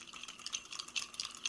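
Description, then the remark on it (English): Three ice cubes clink and rattle against the sides of a small cocktail glass as it is stirred, a quick, bright, continuous jangle of light clicks with no voices. “So let's go ahead and stir that a little bit.”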